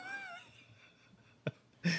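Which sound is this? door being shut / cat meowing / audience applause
cat meowing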